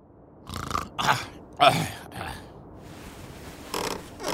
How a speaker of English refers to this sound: Awaking in the middle of a prodigiously tough snore.